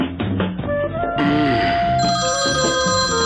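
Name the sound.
telephone ringing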